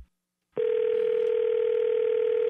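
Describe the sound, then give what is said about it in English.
After a brief silence, a telephone tone comes through a call line to a cell phone, a single steady, fairly loud hum that holds without a break for about two seconds. No voices. “You just called me. I asked you not to call me on my cell phone, and now you're calling me back.”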